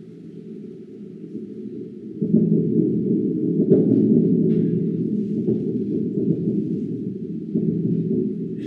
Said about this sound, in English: So I'm about to go with the sound that an erupting underwater volcano makes. These are not earthquakes. These are the sounds that it makes when the lava comes out on the seafloor, and we think it's explosions.